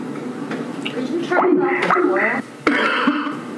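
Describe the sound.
A few rough, throaty coughs come through, mixed with voiced, strained vocal noises and a short break of quiet before another harsh burst.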